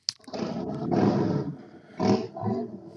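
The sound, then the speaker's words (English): A police motorcycle fitted with a loud Vance & Hines aftermarket exhaust roars, a deep, growling rumble that swells for about a second, dips, then surges again in two shorter revs. No one speaks. “Nah, that's a motorbike cop.”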